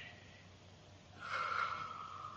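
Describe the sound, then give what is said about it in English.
A single breathy, airy inhale from someone in a room among statues and dummies rises out of a low steady hum about halfway through and holds for a second, slightly nasal and snort-like, with no talking. “Somebody else in this room is breathing.”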